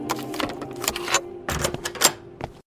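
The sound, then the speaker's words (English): A hotel room door being worked: a string of mechanical clicks, rattles and latch clunks over a low steady hum, with a louder clack near the end before it cuts to silence. “Hotel room door.”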